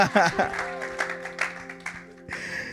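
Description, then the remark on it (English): A church audience claps and cheers during a sermon in a dense, uneven burst of applause, with a voice calling out at the start and steady sustained tones humming underneath before a fresh swell near the end. “That deserves a big clap right there.”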